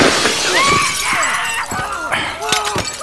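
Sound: glass shattering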